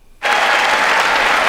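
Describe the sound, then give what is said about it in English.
Sudden burst of applause from a crowd, starting abruptly after a brief quiet moment and continuing as dense, steady clapping at a loud, even level. “And there's a room full of idiots like applauding this.”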